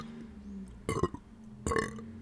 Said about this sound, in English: That was a well recorded burps. Very well recorded.